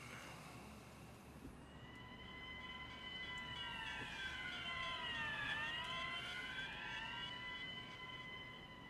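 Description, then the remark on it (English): Fire engine sirens wail steadily over a rumbling street backdrop, their layered tones bending in pitch as the vehicle sweeps past midway through, then trailing on. No one speaks. “We needed our fire engine sirens there to bring Marty back.”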